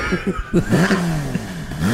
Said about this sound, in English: I couldn't hear you over the engine.